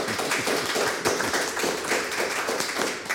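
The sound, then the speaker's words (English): A burst of applause from a small group for a quiz contestant who passed, dense overlapping hand claps filling the space evenly at a steady moderate loudness, with no voices heard. “So a big round of applause.”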